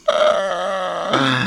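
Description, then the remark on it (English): A loud, drawn-out buzzy fart sounds on its own, holding a steady rasp for over a second before dropping to a lower, rougher tone at the end. “What, eating and farting?”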